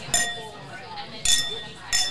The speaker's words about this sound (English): Cling. All right, clink. Here we go. Okay. Do you know why you're supposed to clink your glasses?